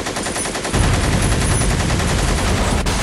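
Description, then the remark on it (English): Loud, rapid automatic gunfire rattles in a dense burst, then a deep, rumbling explosion swells in and keeps roaring beneath continued shooting. No voices. “Another motherfucking explosion.”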